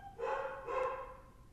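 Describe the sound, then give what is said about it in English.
A dog barks twice in quick succession, two short tonal woofs against a low background hum, with no one talking. “It's fine when it doesn't bark or howl, but when it does that, I immediately just like see red and I just want to smack it.”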